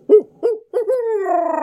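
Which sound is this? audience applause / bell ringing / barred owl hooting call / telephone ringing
barred owl hooting call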